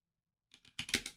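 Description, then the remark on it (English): After a short silence, a quick flurry of computer keyboard typing starts as someone types out random things: a few light taps, then a denser run of crisp keystrokes, with no voices. “I was literally just typing out random things.”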